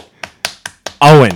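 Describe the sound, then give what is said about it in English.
Four sharp hand claps land in a quick, steady rhythm, each a crisp slap, and then a voice cuts in right after them. “And we're done clapping. Stop clapping.”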